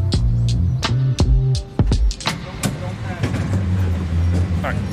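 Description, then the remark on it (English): Riding a San Francisco cable car boarded at the top of Nob Hill: a steady low rumble with sharp metallic clanks and rattles at irregular intervals, fairly loud, with faint indistinct voices in the background. “We met him at the top of Knob Hill, jumped on the cars together,”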